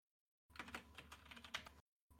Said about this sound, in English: Typing on the keyboard.